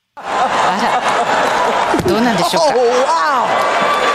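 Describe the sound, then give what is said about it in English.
A single sharp open-hand slap to the face cracks out midway through, loud, over a steady hum of crowd noise and overlapping voices, followed by scattered chuckles and murmuring. “Well, so we will start, though, with the slap heard round the world.”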